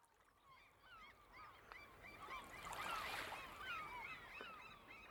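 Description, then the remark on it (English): A crowd of seagulls screams and cries continuously, many overlapping calls swelling to a loud peak midway before easing slightly, over a steady low wash of background noise. “Archmay could hear the seagulls scream and cry for food in the morning sun.”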